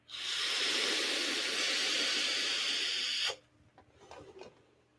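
A steady, loud hiss of a vape being drawn through a mesh RDA runs unbroken for about three seconds, then cuts off sharply, leaving quieter scattered rustles and faint clicks.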